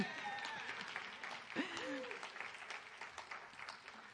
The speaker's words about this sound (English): Amen? Amen. That deserved an applause.